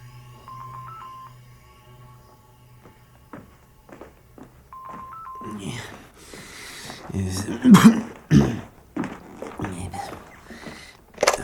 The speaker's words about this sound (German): Nämlich, als jetzt sein Telefon klingelte.